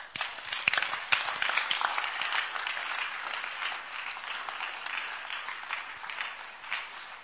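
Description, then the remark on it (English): A crowd at a religious convention breaks into sustained applause for Jesus, many hands clapping in a dense, steady patter for several seconds, with a few sharper claps standing out near the start. “Clap for Jesus.”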